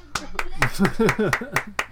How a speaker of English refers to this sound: I'll give you a round of applause.